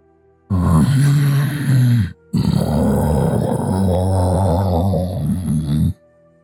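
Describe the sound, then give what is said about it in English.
A deep, rumbling monster growl in two long bursts, low and gravelly with a guttural, throaty texture, briefly broken by a short gap before continuing loudly and fading out, heard from the other side of a barn. “And then you hear a growling.”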